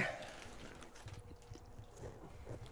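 Faint, irregular crunching as someone bites into and chews a dry piece of food, crunching down on a bone, a run of crackly, uneven bursts with no talking over it.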